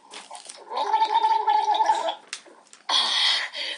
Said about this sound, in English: They're going to the fountain to drink some water.